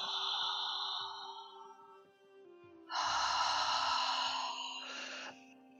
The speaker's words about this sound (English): And you can be as loud as you want for this one. We're going to inhale through our mouth, open mouth breathing like this. So just think of just a relaxed mouth, and you're just going to go like the ocean. You're going to create this sound.